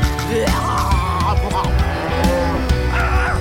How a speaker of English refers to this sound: Milkweed sea cows! They were cute, weren't they?